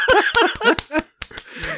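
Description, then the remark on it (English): A quick, irregular series of sharp, loud slaps with giggling and laughter-like vocal sounds in between. No clear speech. “Like the slapping noise.”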